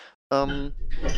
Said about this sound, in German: Entschuldigung, ja, ich bin über mein Kabel gerollt.